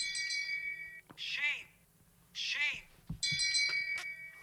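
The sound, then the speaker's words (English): The Game of Thrones shame bell sound effect played from a phone: a bright, ringing bell clangs with a long shimmering decay, then a voice calls out twice in a drawn-out tone, and the bell strikes again and rings on. “It's the Game of Thrones shame bell.”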